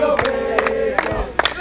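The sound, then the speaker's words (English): A basketball crowd at a game cheers and shouts in a loud, continuous roar as Baco's bench stands up, with voices rising in bursts and whoops breaking through the sustained noise. “Baco's bench standing up. The crowd with them now.”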